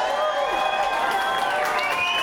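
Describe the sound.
A large crowd at a live concert in Liverpool roars and cheers continuously, a dense wash of shouting voices and clapping that stays loud and steady throughout.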